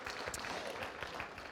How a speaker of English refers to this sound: Okay, yeah, you can applaud that. I think that's good news. That's good news.